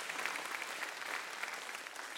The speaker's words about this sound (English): You can clap for that.